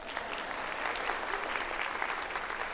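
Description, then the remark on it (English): A group of people applaud steadily, a dense, continuous patter of hand claps at moderate loudness with no voices on top, lasting a few seconds. “Clap for her.”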